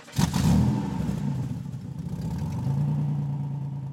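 A car engine starts up with a brief burst, settles into a steady low rumble, then revs up again as the vehicle pulls away to drive to work in the morning. No one speaks.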